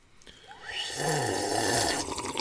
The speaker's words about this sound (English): Think that'll show off on the mic? Think people will know we're drinking water?